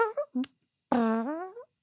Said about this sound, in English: How long until someone like rewires that to be a fart? So you're just like, you're driving along, car making no sound.